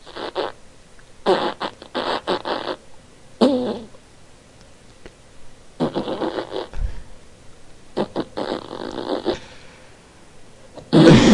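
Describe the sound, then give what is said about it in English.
A string of fart sound effects plays over a phone call, several raspy bursts of varying length separated by brief pauses, fairly loud and with no talking. “They listened to a lot of farts before they hung up there.”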